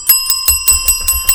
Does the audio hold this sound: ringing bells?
yes